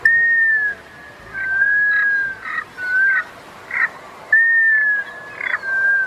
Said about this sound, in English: Some ducks quack. Some ducks seem to ask questions. Today's featured feathered friend is one of the ducks that whistles.